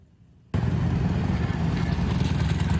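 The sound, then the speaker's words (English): After a brief near-silence, the engines of 12 motorbikes lined up at Gushan Ferry Pier in Kaohsiung, preparing to catch a ferry to Penghu, cut in loudly, holding a steady, rumbling drone with a busy mechanical hum throughout. “Here at Gushan Ferry Pier in Kaohsiung, 15 people have lined up with 12 motorbikes, and they're preparing to catch a ferry to Penghu.”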